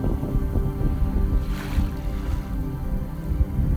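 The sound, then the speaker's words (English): Steady low rumble of ocean surf on the beach at Jumeirah in Dubai, recorded during a walk, with one wave surging and hissing up the beach midway, mixed with some wind buffeting the microphone. No voices. “I was going for a walk on the beach in Jumeirah in Dubai, and I just recorded the sound of the waves back when you could walk outside.”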